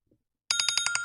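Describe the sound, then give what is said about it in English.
A bell rings to signal that it is time to eat, in a rapid, continuous rattle of bright metallic strikes, about ten per second, loud and steady. It starts abruptly after a brief near-silence, with no voices. “And there's the bell. That's it's time. Time to eat.”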